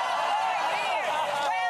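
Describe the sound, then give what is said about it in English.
A crowd of voices chants the slogan "12 more years" together in unison, a loud, sustained swell of overlapping shouting that rises and falls with the rhythm of the slogan. “Yeah, there they go, shouting 12 more years.”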